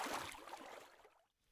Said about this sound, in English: Uh-oh, a river. A deep, cold river. We can't go over it. We can't go under it. Oh no, we've got to go through it. Splash, splosh, splash, splosh, splash, splosh.